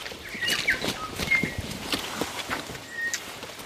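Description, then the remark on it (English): Boots squelch through wet mud as someone walks up a hill on Anchor Island, on trails turned into small streams by heavy rain, in a steady, uneven walking rhythm, fairly loud, while a few thin bird chirps sound faintly in the background. “Typical sound of Anchor Island is the squelching of your boots.”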